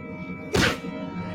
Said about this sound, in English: Ouch. I mean, you're seeing punches connect.